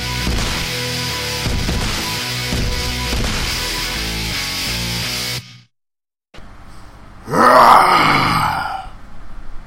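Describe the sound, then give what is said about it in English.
A loud music passage cuts off into a brief silence, then a single human voice lets out a rough, drawn-out roar, imitating a beast with a strained, gravelly growl that swells and fades. “That was my roar.”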